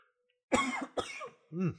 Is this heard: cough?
yes